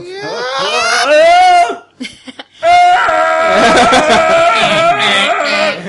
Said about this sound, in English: Wilhelm scream. Viva la revolution. Wilhelm scream. Nice reference.